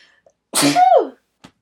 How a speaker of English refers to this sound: Hold on, I have to sneeze.